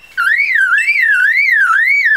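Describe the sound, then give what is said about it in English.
A male lyrebird in a forest gives a loud, clear call mimicking a car alarm, a pure tone sweeping up and down in a steady wailing cycle, repeating continuously from start to finish with no voices. “And that's a car alarm.”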